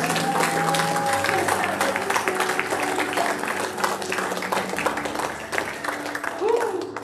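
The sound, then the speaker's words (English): An audience applauds to give the Lord a hand, with dense, steady clapping that fills the whole stretch, loud and sustained, while scattered voices and faint tonal sounds rise underneath. “I tell you, that's worth a clap. Can we give the Lord a hand?”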